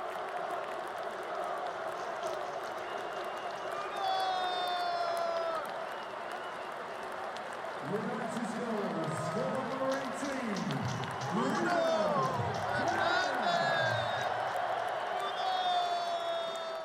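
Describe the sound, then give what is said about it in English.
A stadium crowd roars and applauds after Bruno Fernandes scores a penalty kick, a dense wash of cheering with one voice yelling excitedly in rising and falling shouts above the noise. “Excited as I am, he just scored. That's amazing. That's me yelling.”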